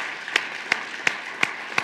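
An audience applauds steadily in praise of God during a sermon, a dense wash of hand clapping punctuated by five sharp, evenly spaced claps in a rhythmic beat. No one speaks.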